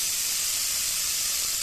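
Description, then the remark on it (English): A rain stick shaken in one continuous pour, making a bright, steady hiss like light rainfall that holds an even loudness throughout, with no voices. “Oh, by the power of the rain stick.”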